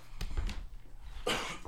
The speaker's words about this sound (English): Now I can cough, huh? First of all, you need to go to the doctor. How is you coughing like that?